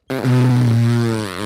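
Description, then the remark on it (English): A single loud, drawn-out fart with a low, buzzing tone that shifts slightly in pitch, lasting over a second, with no talking. “You started farting”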